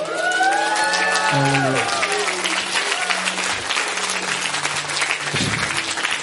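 An audience bursts into loud, sustained applause mixed with shouts and cheers of praise to God, while sustained organ or keyboard chords ring underneath, the clapping dense and steady throughout.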